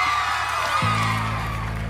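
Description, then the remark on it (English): A crowd cheers and whoops in a steady, loud roar, asking for one more song, joined partway through by a sustained low droning tone that holds to the end. “The crowd are asking for one more song.”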